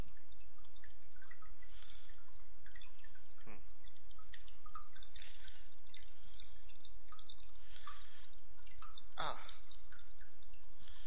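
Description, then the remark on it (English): Cold water drips irregularly in a big hole in the ground, with a few sharper splashes standing out against a soft, steady background of trickling and hiss. “God, this water's cold.”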